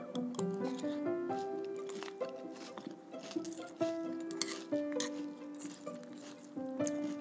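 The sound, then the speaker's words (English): Crisp, irregular crunches of a granola-type cereal and a peanut butter Captain Crunch-type cereal being chewed, a steady run of sharp crackling bursts heard over a sustained melodic tone that shifts pitch throughout. “Each one of those crunching sounds represents pure delight.”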